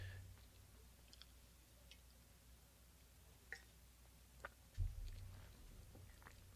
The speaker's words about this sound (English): Ah. Gotta get my whistle wet.